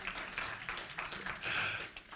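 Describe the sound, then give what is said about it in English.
A church audience claps together during a service, a dense, continuous patter of many hands that swells briefly toward the end before easing slightly. No one speaks over it. “Yeah, if we're going to clap, do it right, all right?”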